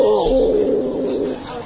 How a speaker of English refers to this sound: Oh, pretty bird. Oh, pretty bird.